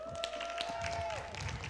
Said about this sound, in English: Everybody, round of applause for